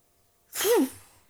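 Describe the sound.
A single short vocal imitation of a motorbike skidding, a breathy, hissing burst with a brief rising-and-falling squeal, loud, then trailing off into quiet.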